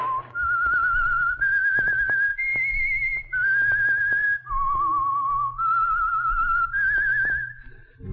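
The whistled theme of the radio mystery drama The Whistler: a clear, steady whistled melody of long sustained notes stepping up and down in pitch, played alone with a faint low hum underneath and brief gaps between phrases.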